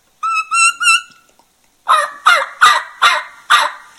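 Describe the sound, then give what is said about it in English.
A turkey call imitating young turkeys learning to call starts with three quick whistled, high-pitched notes, then a pause, followed by five raspy, yelping calls in a steady rhythm, loud with no talking. “I like a little rasp, but I like a little highness in the call too, because the turkeys are trying to learn to call.”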